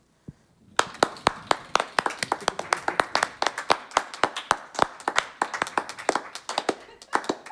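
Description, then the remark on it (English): Hand claps mimic a spinning prize wheel as a player spins in a letter-guessing game: sharp, rapid claps in a steady ticking run, starting quick and gradually spacing out as if the wheel slows, with no talking. “Wheel of Clapping”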